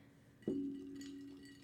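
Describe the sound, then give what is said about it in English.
A single bright clink of two drinking glasses, holding a gimlet and an old fashioned made with Jim Beam, touching in a toast, followed by a clear ringing tone that slowly fades, fairly loud against a quiet background. “Cheers. Cheers. You are extra icy, jiggly. Clinkies. Clinkies.”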